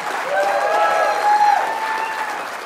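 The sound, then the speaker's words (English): An audience applauds steadily for a few seconds, a dense wash of clapping filling the room, with a faint sustained tone ringing underneath. “Can we give them a good clap offering?”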